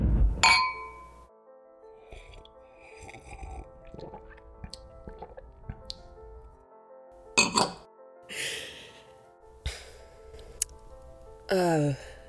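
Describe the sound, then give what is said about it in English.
A single bright clink of wine glasses in a toast rings out near the start with a sustained tonal ring, followed by quiet sips, breaths and small rustling sounds, with no talking. “I haven't had wine in a while. Do you not like it or something? No. I like it fine. Cheers.”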